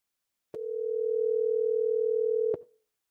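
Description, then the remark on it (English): A telephone rings on an outgoing call: one steady electronic tone held for about two seconds, bracketed by soft clicks, with silence around it and no voices. “As the phone rings, my heart starts to race.”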